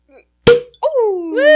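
A champagne cork pops once with a sharp, loud burst, followed a moment later by people whooping in rising, excited voices.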